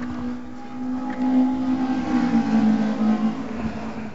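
A race car engine roars past on a track, its steady buzzing drone swelling louder through the middle and then dipping slightly in pitch as it moves away. No one speaks.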